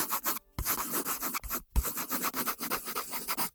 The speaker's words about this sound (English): Now, here's the next sound. Have a guess for that sound? It was a pencil writing on paper. I'll play it again so you can hear.